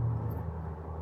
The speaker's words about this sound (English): And that silence, the silence that's the background against which you can hear the cars and the motors and the interference, the dissonance against the resonance of the water.